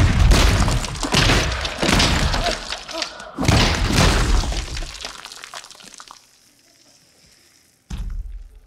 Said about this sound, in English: Puny God. As the Hulk slams Loki down, the Hulk walks away and goes, "Puny God."